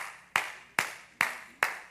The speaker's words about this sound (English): Golf clap, you know what golf clap is? That's what everybody, he steps up for the putt. It's a three-footer. And he makes it. There's a golf clap.